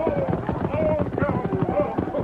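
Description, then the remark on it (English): A busy clatter of galloping hooves, dense and loud, as Tonto, Lame Bear's son and Jim ride up and bring their horses to a rearing halt, horses whinnying over the rush, with a muddle of voices mixed into the noise. “Tonto, Lame Bear's son and Jim, thundered close and brought their horses to a rearing halt.”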